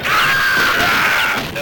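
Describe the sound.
A voice imitates the scream of the Metal Slug arcade game character as he shoots people, a single loud, sustained high-pitched yell lasting over a second before cutting off abruptly.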